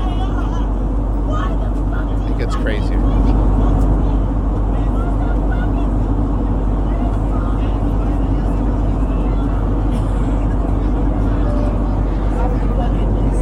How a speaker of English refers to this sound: By the way, people that make fake plane videos, that's the thing you're missing is the actual noise of a plane flying.